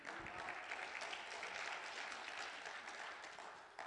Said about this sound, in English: I know it's Palm Sunday. Every now and again, just clap your, put your palms together and let the Lord know you're here.